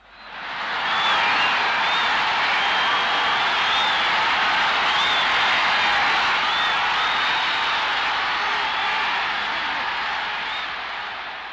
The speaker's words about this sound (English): All right, hopefully the cheering didn't blow eardrums out.